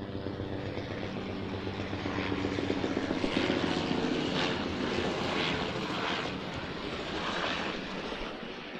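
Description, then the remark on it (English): Helicopters arrive and thrum overhead, a loud, continuous rotor and engine roar that swells slightly in the middle, with no voices. “That's it, and the helicopters are here now, so I better get going.”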